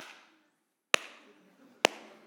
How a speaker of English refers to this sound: starts slow clapping like the meme and the guy from Rudy, you know, like, and he stands up and he's clapping and he's like, I have never heard this before.